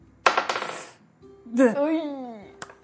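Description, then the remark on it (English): A quick burst of clattering as dice tumble and rattle across a hard tabletop for an attack roll in a game, settling within a second, followed by a person's voice speaking. “I'm not going to use this dice. This one's better.”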